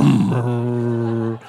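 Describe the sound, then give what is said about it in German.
A voice imitates a Ferrari engine revving as the key is turned: a brief rising rasp that settles into a steady, loud, buzzing drone with strong harmonics, held for over a second before cutting off. “Du setzt dich in den Ferrari, du machst den Schlüssel an. Vroom.”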